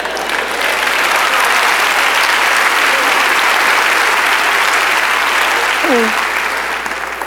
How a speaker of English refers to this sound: Y'all was clapping on that job thing. Y'all didn't clap on that marriage thing right there.